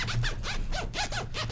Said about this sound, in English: Please. You're going to spoil that zipper. Dude, he's had dude, that people, bag since he was in freaking high school. It's a Jan sport. You're right. It's right. Already like 25 years old.